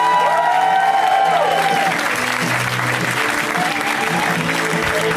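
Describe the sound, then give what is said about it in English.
A comedy show crowd applauds steadily and loudly as comedian Jared Logan is introduced, dense clapping running throughout with some cheering and whoops mixed in, plus a few brief rising whistle-like tones early on. “You can keep that applause going for this next comic, who I love, one of my favorites.”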